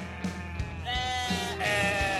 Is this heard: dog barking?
no